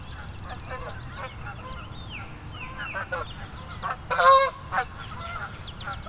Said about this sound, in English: There goes a couple Canada geese.